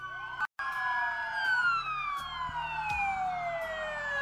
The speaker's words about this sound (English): reached out to the South Bend Police Department with just this fitting request to see the lights and hear the sirens of the police cars that were called the soundtrack of his life for so many years.